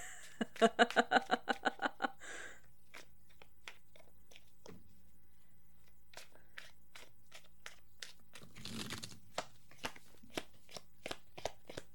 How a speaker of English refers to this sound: It's really hard to shuffle when you can't use your pointer finger.